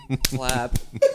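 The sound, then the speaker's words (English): Three sharp, fleshy claps land in a quick, even rhythm, like thighs slapping together, while voices talk and laugh around them, with a short vocal sound at the end. “Oh, clap.”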